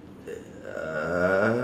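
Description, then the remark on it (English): A single drawn-out, buzzy fart sounds up close, rumbling low and growing slightly louder over about a second and a half, with no one talking. “Somebody farted. I heard it or smelt it.”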